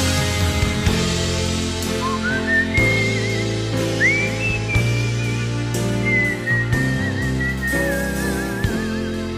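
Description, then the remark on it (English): A wavering whistled melody glides above a full instrumental backing, sustained notes with gentle vibrato carrying the tune through most of the passage. No one speaks. “I kind of like that one moment where he starts whistling a little bit.”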